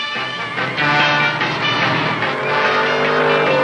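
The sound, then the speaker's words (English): Loud, continuous engine roar from cars racing in a chase, one car dragging an armored car, with rising and falling revving that stays intense for the whole stretch. “How do you hope to outrace the Batmobile? While dragging the armored car.”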